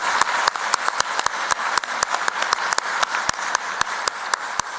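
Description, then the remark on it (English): An audience at a convention claps for the organizing committee coordinator and her team, a steady, dense wash of many hands with sharper individual claps popping through at an irregular rhythm, sustained and fairly loud throughout, with no talking. “Let's give her and her team a round of applause.”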